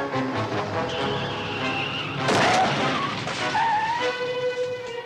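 Tires squeal in a sustained skid, then a loud crash bursts out around the midpoint, followed by scraping, rattling debris and more squealing as the vehicle grinds to a stop.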